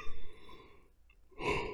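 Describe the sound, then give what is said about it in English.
A drawn-out yawn: a breathy, groaning inhale with a faint voiced tone, a brief quiet lull, then a loud airy exhale at the end. No talking. “Man, excuse me, I keep yawning.”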